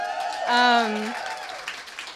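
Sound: audience clapping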